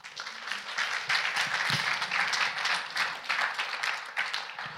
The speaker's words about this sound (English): Okay, so I want to give him a round of applause.